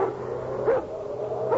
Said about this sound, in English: What are they? House pets, I guess. Hey, those are Doberman pinchers.